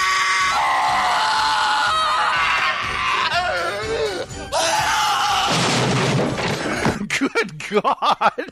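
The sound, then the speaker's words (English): In a film scene, several people scream loudly and continuously, overlapping shrieks and yells with a thud partway through, then the screams break into shorter, ragged cries near the end. “He's screaming, Peyton screaming, and Julie screaming.”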